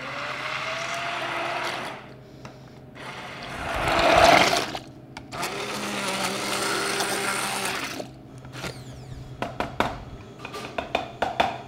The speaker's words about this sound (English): So you do want to make sure that you have kind of a small bowl, you tilt it to the side, and you stick your immersion blender all the way in.